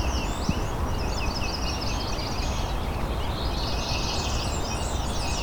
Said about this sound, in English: black-throated green warbler out there.